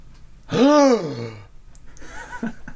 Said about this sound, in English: Oh, don't worry about them. They just have the cards, and the cards told them to gasp.